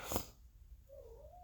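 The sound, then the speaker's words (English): A cat in heat lets out a single drawn-out, wavering meow in the background, fairly faint, following a brief rustling burst; no one speaks. “Please ignore my cat in the background. She's in heat.”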